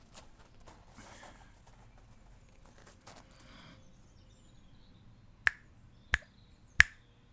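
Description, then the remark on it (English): Three crisp finger snaps land in quick, even succession near the end, loud, after several seconds of quiet room noise with faint rustling. “Snap your fingers twice if you understand your instructions.”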